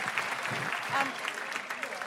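A crowd claps steadily for about two seconds, a dense, even patter of many hands at a constant loud level, with faint voices mixed in beneath the applause.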